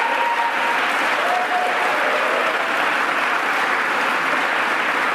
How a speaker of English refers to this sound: Majority Leader Crystal People Stokes, I mean, thank you for being the voice of this community, not just here, but in the halls of Albany when it really makes a difference. So let's give her a round of applause as well.